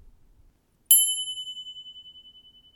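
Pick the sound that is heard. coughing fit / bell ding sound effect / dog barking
bell ding sound effect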